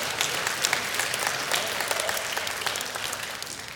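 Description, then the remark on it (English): An audience claps steadily for teachers for a few seconds, a dense, even wash of many hands with crisp individual slaps standing out, holding at a constant loudness with no voices. “Yeah, you can clap.”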